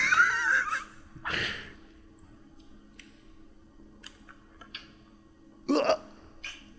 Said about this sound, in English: All right, we're gonna do this Japanese ASMR licking glass. See if she... How does licking glass make a sound? Oh, she's about to do it. She's getting real close to that glass. Yep, there it was.